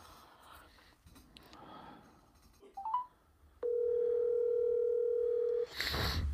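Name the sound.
telephone dial tone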